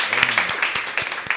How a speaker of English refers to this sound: You guys are heroes to me. I need to give a round of applause.